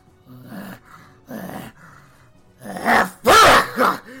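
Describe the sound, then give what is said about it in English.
Rough, guttural throat clearing caused by allergies, with no talking: two short, low rasps, then a louder, strained burst of hacking and coughing that ends in a couple of harsh grunts. “Oh god, I'm terribly sorry about that. Allergies.”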